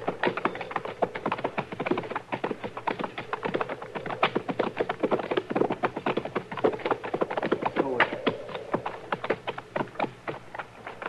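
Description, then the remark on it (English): Hooves of several ridden horses clip-clop steadily on hard ground as the riders head toward some trees, a quick, busy stream of overlapping hoofbeats that continues without pause, moderately loud, with no voices. “All right, we'll ride up to them and look it over from there.”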